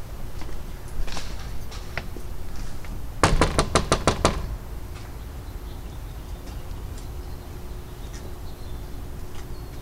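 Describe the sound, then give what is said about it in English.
A rapid burst of six or seven firm, evenly spaced, sharp knocks on Cummings' front door, surrounded by quiet outdoor ambience with no one speaking. “And so I guess the hopes were to knock on Cummings' door and ask him if he would like to also take a tour, because like I said, those residents haven't seen him in years.”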